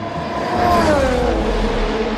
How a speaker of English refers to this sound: That's a Formula One race car. They routinely hit 200 miles per hour, faster than a jet on the runway. That's fast.